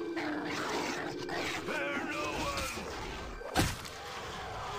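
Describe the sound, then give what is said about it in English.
A wolf snarls and growls through a busy stretch of video game combat noise, with a sharp, loud thud landing near the end. “A wolf weir. Let's get rid of him.”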